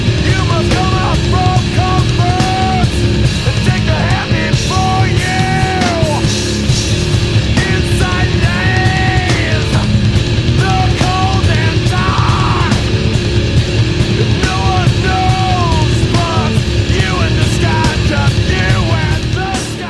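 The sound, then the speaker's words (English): A loud, dense metal track: distorted guitars and rapid, pounding double bass drumming fill the mix while a harsh vocalist screams and wails over the top throughout. “But then that rhythm section pauses, the guitar plays, and then double bass, which I think is the only time on this album you hear this,”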